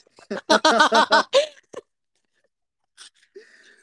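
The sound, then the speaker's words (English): Someone choking and coughing on water: a rapid run of about six strained, voiced sputters, a short final cough, then faint breathing as they recover. “I'm choking on my water.”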